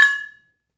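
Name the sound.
beer glasses clinking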